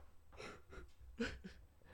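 A person yawns, a few breathy, wheezy pulses of air rising and falling over two seconds, with no talking alongside.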